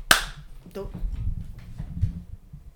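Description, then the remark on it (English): A single sharp hand clap rings out loud at the very start, followed by low murmuring voices and room noise. “We're at 27 minutes. Okay, and clap.”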